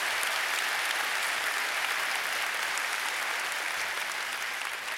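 audience applause

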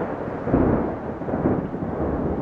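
clap of thunder

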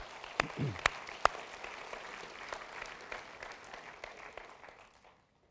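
audience round of applause

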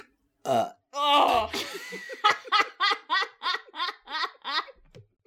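burp

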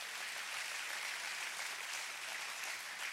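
audience applause

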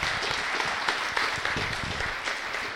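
audience applause

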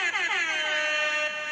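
horn sound effect

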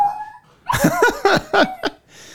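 dog howling and whimpering

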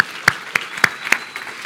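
audience clapping applause

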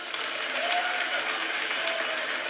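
audience clapping

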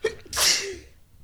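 sneezing

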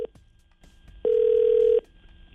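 telephone dialing and ringing

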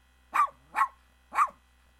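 puppy barking

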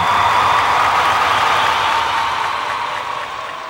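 crowd applauding

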